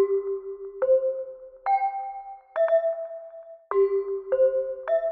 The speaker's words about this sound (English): the idea was that at the end of each program, the announcer who's at the microphone and is saying, this is the National Broadcasting Company, would strike a seven-note chime sequence on a set of hand chimes that he held next to the microphone.